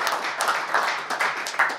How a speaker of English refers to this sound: Guys, can you please give a warm applause for Alan?